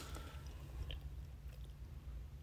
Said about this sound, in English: I feel like they can hear me chewing. What? Like, I'm eating my gummy bears. I feel like they can hear me.